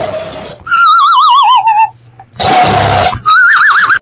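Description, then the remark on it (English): A loud, wavering, whinny-like cry from a meme video that comes across as a dog-like yawn, in three bursts: a long warbling call, a harsh noisy blast, then another shorter warbling call. No talking. “It was like a dog like yawning or something.”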